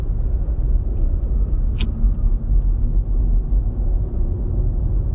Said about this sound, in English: There's so much traffic on this goddamn highway. Houston for you.